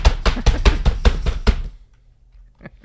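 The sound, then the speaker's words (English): Loud keyboard typing: a quick, even burst of about eight sharp, clacking keystrokes, then a pause and two fainter taps at the end. No voices. “My keyboard's very loud.”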